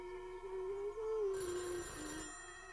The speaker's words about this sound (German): Ah, Telefon.